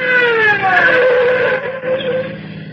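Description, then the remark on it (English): A patrol car siren on Old Mamaroneck Road wails loudly, its rich harmonic tone gliding slowly downward in pitch over a few seconds, with a low rumble of engine noise underneath. “Oh, hear that? Patrol car? I told you. Here comes our speeding ticket.”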